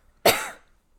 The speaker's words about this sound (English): I could identify that as your cough.